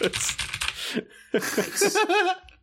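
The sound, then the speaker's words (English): A burst of rapid, busy computer keyboard clacking, followed by a voice making playful, sing-song sounds that seem to imitate exaggerated typing. “I don't know what every time I hear the clacking of your keyboard, I think of like you're a Muppet and you're just like pow, pow, pow, pow, pow, like with your like the way they would make a Muppet type.”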